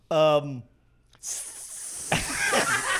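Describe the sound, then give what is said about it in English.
A short voiced, harmonic utterance, then a pause before a person produces a long, loud breathy hiss imitating a snake with a European accent, with laughter-like vocal sounds joining under the hiss near the end. “That's definitely a European snake accent.”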